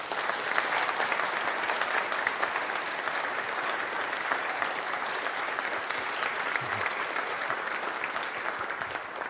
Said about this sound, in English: Why don't we give them a big round of applause?